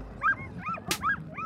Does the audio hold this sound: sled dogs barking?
yes